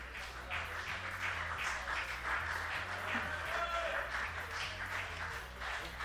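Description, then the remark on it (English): A crowd in Sri Lanka applauds steadily for several seconds at the mention of a cricket correspondent's name, a dense, continuous patter of many hands at an even level over a low background hum, with no clear voices standing out. “Isn't it lovely that they give him a round of applause?”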